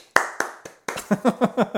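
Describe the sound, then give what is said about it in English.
Three sharp, spaced hand claps ring out, then a quicker run of about six hollow, slightly voiced clap-like bursts follows in a steady rhythm. No one speaks. “Cue the clapping noises.”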